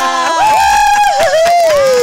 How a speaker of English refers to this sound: Applause.